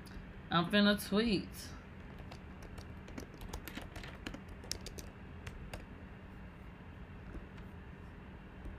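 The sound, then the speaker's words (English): Typing on a computer keyboard to write a tweet: a steady stream of soft, irregular key clicks that runs for several seconds, preceded by a brief voice at the start. “I'm finna tweet.”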